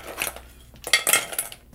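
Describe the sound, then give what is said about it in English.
A rapid cluster of bright clinks and rattles as ice cubes drop into a metal cocktail shaker while Harvey Wallbanger cocktails are being mixed, with a louder jumble of knocks in the second half and no talking. “And then I'm going to put ice in our shaker.”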